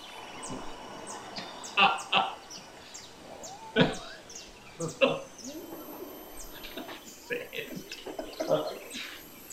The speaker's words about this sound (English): We're hearing the seashore. We don't want the seashore.